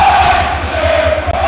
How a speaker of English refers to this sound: The noise from the Wrexham fans.